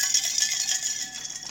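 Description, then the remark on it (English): Ice cubes rattle and clatter continuously in a shaker as a cocktail called the Beautiful, made with red berry Ciroc, a splash of green Acapulco and pineapple juice, is mixed, a bright, busy jangling with steady rhythmic pulses and no voices. “Get your glass. Fill it up with ice.”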